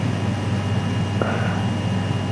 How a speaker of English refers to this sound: Sounds like you're sitting right next to the air conditioning unit. Yeah, it is. It is. Sorry about that. No, but it sounds nice and cool, so keep it going.